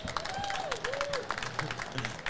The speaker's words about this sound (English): Molly, round of applause for Molly Seidel, everyone.